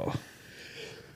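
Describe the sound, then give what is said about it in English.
A single quick, sharp sneeze bursts out at the very start, then fades into a quiet stretch of faint background noise. “Bless you.”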